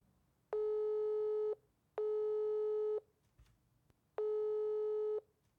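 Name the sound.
telephone call tone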